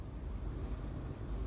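A steady, low rumbling drone of road noise, like the muffled hum of traffic heard from inside a moving car, continuous and fairly quiet with no voices.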